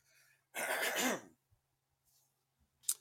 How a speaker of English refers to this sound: If you remove not the throat clearing. Well, no, I just had to clear my throat in general.